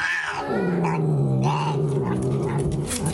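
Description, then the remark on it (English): An angry cat that does not want to cuddle hisses and growls at its owner in one continuous low, raspy snarl lasting a few seconds, fairly loud, with no one talking. “Instead of a kiss, his owner gets a hiss. Better leave this kitty alone.”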